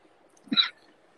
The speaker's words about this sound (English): Oh shit! I just coughed. Yeah. It's like everybody's like, "Oh, it's a dry cough."